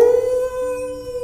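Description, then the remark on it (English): A single long wolf howl holds one steady, ringing pitch, loud, with no voices or other sounds around it. “All right, says Wolf, and she lets loose a howl.”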